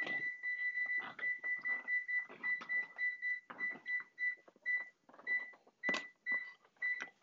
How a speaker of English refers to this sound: Set a timer. Hold on. I'm going to 15 minutes. So I'm set a timer, 5, 10, 15. All right, good. We're on time here. That's good. I'm going to set my timer as well.